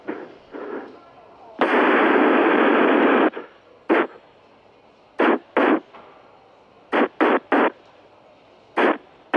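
Popping fart sound effects, so-called popcorn farts: a long, loud raspy blast followed by a scattered series of about eight short, sharp pops, some in quick pairs and triplets, with faint murmuring before them.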